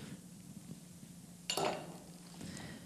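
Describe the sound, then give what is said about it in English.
A single sharp metallic clank of a wrench knocking against a frying pan as they are handled, ringing briefly before fading, followed by a softer rattle over a low steady hum, with no one speaking. “So why did I bring my frying pan? The wrench, I forgot to show you this one right here.”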